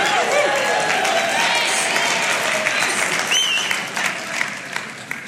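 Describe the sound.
Sustained applause from an audience, a dense wash of many hands clapping at a steady loudness that starts to thin out near the end, with some crowd voices mixed in.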